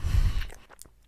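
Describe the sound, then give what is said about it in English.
Chewing of a bite of pizza eaten as a late dinner: a muffled low thump of the mouth working, then a few soft, wet clicks and light crunches as the chewing slows. No one speaks. “sorry, I wanted to actually chew that and not talk with my mouth full.”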